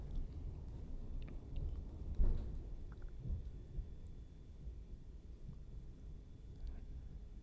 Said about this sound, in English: Oh my gosh, the thunder's back.